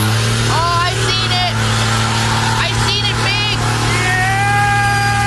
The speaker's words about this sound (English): Small town lullabies here, or small town white noise, perhaps. So it starts with the diesel trucks here.